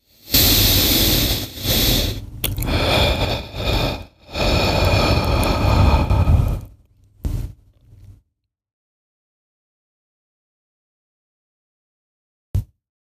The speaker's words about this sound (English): One way that might help to do this is deep breathing, where you go.